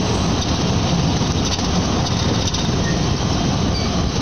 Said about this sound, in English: Well, he's driving pretty good. You hear all the road noise.